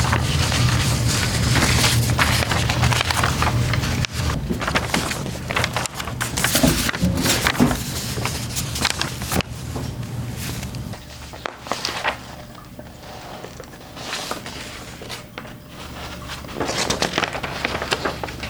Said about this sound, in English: You've been listening to the sound of an 8-year-old turning the pages of her hand-drawn and stapled comic books.